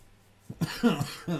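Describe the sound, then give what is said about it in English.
A small, soft cough, a couple of short throaty bursts in quick succession after a moment of near silence. “Well, hey, I didn't cough during the intro.”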